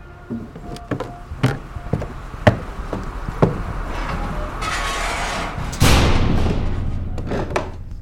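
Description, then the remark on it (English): A heavy sidewalk cellar door leading under a restaurant is handled with a series of wooden knocks and thuds, then swings shut with a loud, rumbling clatter that slowly fades. No one speaks. “I'm entering a sidewalk cellar door going under the restaurant.”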